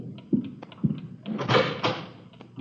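A door is opened to a man coming from next door: a couple of dull knocks and thuds, then a longer scraping, rattling swing lasting about half a second, with no one speaking.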